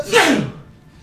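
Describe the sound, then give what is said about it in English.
A single loud sneeze: a sharp breathy burst that sweeps downward and fades quickly, with no talking. “I unfortunately can't sneeze when I'm mouth closed.”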